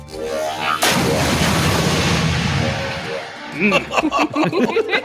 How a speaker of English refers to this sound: Do we want to hear what an ultra plasma cannon sounds like? I think you know we do. Yes. Yeah. I think I know we do, too. Listen to her roar!